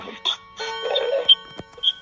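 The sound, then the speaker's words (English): A clock alarm blares with a horn-like, buzzy tone, holding steady pitches broken by short bright bleeps, moderately loud. “I hear a horn blowing. That's my clock.”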